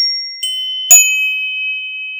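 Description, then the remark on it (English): A bright metallic chime rings out, a soft light tap followed by a sharper strike whose clear high tones sustain and slowly fade. Fairly loud, with no voices. “Chimes!”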